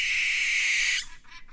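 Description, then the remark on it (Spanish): A single harsh, hissing barn owl screech holds steady for about a second, then breaks off into a few softer, fading rasps. No voices. “Durante mucho tiempo se ha creído que la lechuza común es quizás el ave terrestre más presente en el mundo.”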